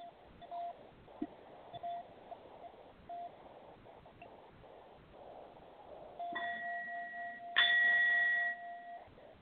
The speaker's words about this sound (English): We're going to be connecting with a brass bowl, letting there be movement through your body to unblock any type of interference in your space.